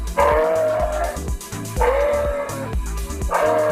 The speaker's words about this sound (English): It was a moose in the hoose.